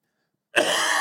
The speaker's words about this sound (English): Yeah. Okay, I'm officially tired of coughing. I know, isn't it? It's 2 weeks. Oh, really? And it won't go away.